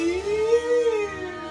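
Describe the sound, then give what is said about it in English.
A voice imitates a police siren with one sustained wailing tone that rises slowly, holds, then falls away over about a second and a half. It is fairly loud, with no talking. “That's my police siren sound.”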